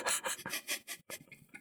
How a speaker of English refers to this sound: Hear my footsteps. I'm coming.